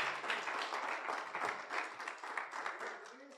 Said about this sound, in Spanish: Un fuerte aplauso al Señor en esta mañana.